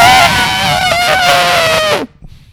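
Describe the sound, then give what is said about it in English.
A voice imitates an elephant trumpeting: one loud, brassy, high-pitched blare held for about two seconds, wavering slightly before dropping off abruptly into near silence. “That was a great elephant.”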